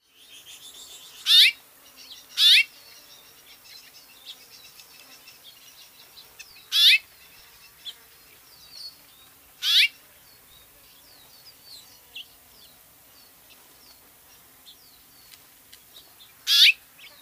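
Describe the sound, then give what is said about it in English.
Several sharp, bright house finch calls ring out at uneven intervals, five loud chirps standing out over a soft background of fainter twittering, with no voices. “Here are a few more calls of the house finch.”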